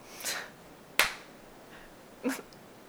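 Three sharp hand claps ring out alone, unevenly spaced over a few seconds. The middle clap is the crispest and loudest, and no one speaks.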